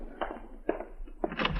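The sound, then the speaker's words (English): Three dull, muffled knocks on a door, spaced about half a second apart, with the last one heavier and more drawn out. No voices are heard. “Oh, there's somebody at the door.”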